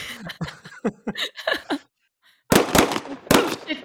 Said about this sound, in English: You give me gunshots and screams on a soundboard, I'm going to hit them, dude.